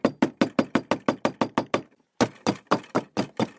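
Loud knocking on the front door of a house at Fox Hollow Farm: a fast run of about ten sharp raps, a brief pause, then another insistent burst of quick knocks.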